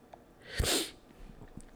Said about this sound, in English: I don't have COVID. I'm just sniffling.